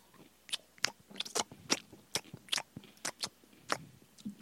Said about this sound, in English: He said, just crunch more into the mic.